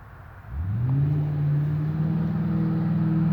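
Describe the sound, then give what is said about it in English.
A vehicle engine rumbles up out of a quiet background and holds a steady, fairly loud drone of road traffic passing in the background. No one speaks. “I know there's a lot of traffic going on in the background, y'all.”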